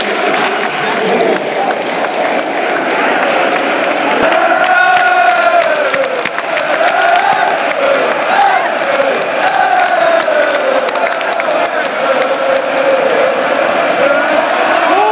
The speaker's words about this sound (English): And that's the full time whistle. The Rangers fans cheer. They hung on! Hung on! With 11 men against 9.